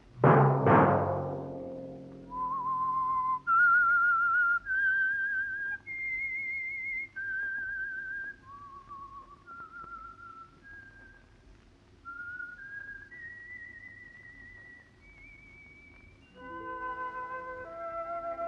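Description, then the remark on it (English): A solitary whistled theme melody, the signal for a weekly sponsored program, rises and falls through a slow tune, each note clear and sustained, with a deep orchestral chord at the start and more instruments joining softly near the end. “Let that whistle be your signal for the Signal Oil program, The Whistler, each Wednesday at this same time.”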